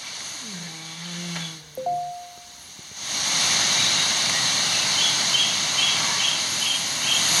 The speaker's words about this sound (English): Oh, that's a bird. No, listen again. Sounds like a bird and a fart. Sounds like something from the Amazon.